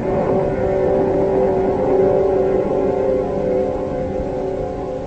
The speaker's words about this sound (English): And then there was the most terrible, grinding roar as if some monstrous animal had ripped the entire bottom out of the boat.